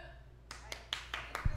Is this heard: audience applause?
yes